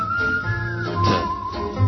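A whistled melody plays over a music track, clear sustained tones gliding between pitches with a steady backing beneath, fairly close and moderately loud throughout.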